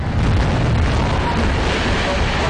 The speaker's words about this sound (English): With a series of small explosions lighting up the night sky, what remained of the collapsed apartment building was brought crashing to the ground.